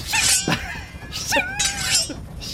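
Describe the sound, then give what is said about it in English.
Shuriken (throwing stars) thud into a bathroom stall door three times in quick succession, each sharp metallic strike followed by a bright, wavering ringing tone, with no voices. “They were hearing throwing stars. Yeah, shuriken coming through the door.”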